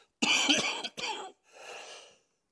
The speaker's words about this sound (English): Forgive me. My sinus infection has got my cough worse this week.